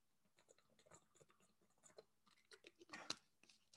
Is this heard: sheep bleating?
no